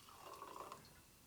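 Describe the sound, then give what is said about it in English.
Prosecco poured into a glass in a short, steady stream, a soft gurgling trickle with a faint fizzy hiss, fairly quiet, with no voices. “Pouring Prosex.”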